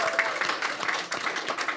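An audience breaks into a round of applause for a man given the Best on Ground award, a dense, steady patter of many hands clapping at once, fairly loud and sustained throughout with no voices standing out.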